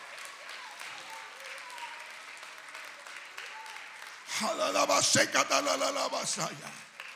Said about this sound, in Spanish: Dios ya ha dado una orden. Alguien alaba a Dios con sus palmas.